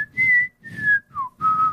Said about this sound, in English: I wish I could whistle. Because I would whistle that right now. Yeah, there it is.